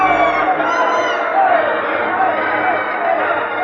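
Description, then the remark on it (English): A large arena crowd at a wrestling match, on its feet, roars and screams in a sustained, loud wall of noise, with shouts and whoops rising out of the din throughout. “The crowd on its feet, screaming.”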